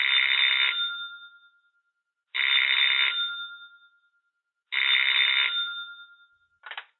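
A telephone rings in three long, bright bursts with pauses between, each trailing off, then a fourth ring starts and is cut short. Clear, with no voices.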